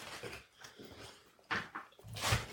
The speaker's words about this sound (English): Anybody listening to the podcast who doesn't like the sound of chewing, look away now. I'm probably not editing this out. Nom, nom, nom.